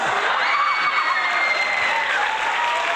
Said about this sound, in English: Ladies and gentlemen, out there listening on the in the airways, everyone give it up for our guest today, the one and only Robbie from …. Applause, applause.